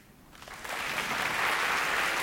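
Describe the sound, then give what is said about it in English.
A crowd breaks into applause as those who knew their spouse five years or less before marrying clap, the clapping swelling within the first half second into a steady, dense wash of many hands that holds loud for the rest of the moment. “Clap if you knew your person 5 years or less.”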